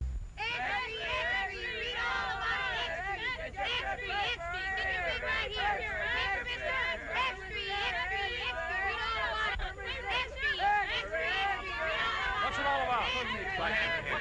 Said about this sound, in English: What's all the shouting?